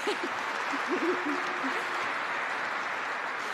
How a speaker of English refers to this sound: I thought that might get an applause.